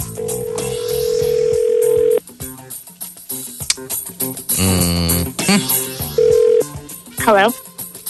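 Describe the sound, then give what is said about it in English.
A steady phone dial tone gives way to a quick run of dialing beeps as a call is placed for the Dialing a Winner segment, followed by a louder burst of ringing and a final short tone, all clear. “On these phones. These phones.”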